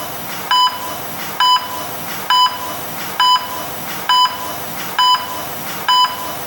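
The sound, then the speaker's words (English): Medical monitors taped to a patient's chest, arms and head beep faster, in a steady, regular rhythm, seven short electronic tones a little under a second apart, clear over a faint background hum. “The monitors, taped to Archie's chest, arms, and head, beeped faster”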